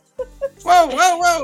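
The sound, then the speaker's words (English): Someone imitates a dog's yelp: two quick soft yips, then a drawn-out, wavering, high-pitched whine with rising and falling pitch, fairly loud. “Did that yelp come from? Why the yelp?”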